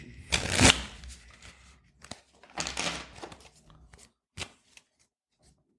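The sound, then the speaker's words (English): A deck of tarot cards being shuffled, with two longer riffling bursts followed by a few short flicks and taps, then quiet. No one speaks. “Get one ear pick shuffle.”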